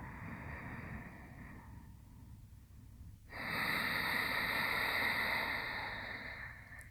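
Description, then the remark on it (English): Slow, audible Ujjayi pranayama breathing through the nose: a soft hissing breath, a brief pause, then a longer, louder exhale out the nostrils with a steady, whooshing white-noise rush. No one speaks. “See if you can hear the sound of your exhale as you breathe out your nostrils.”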